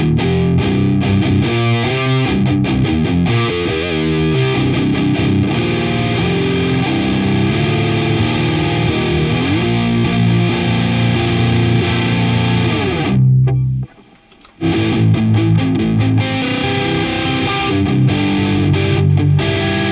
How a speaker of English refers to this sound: So, moving forward, basically the tone and the volume are dimed, and the drive or gain or distortion, whatever you want to label it as, I don't care, is over just before 3 o'clock. It sounds fat, man. It's good. I dig it.